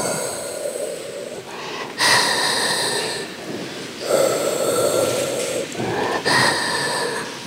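Steady, rhythmic mechanical breathing from a hospital respirator keeping a man in a coma alive, loud, with a hissing intake and whooshing release cycling roughly every two seconds. No one speaks.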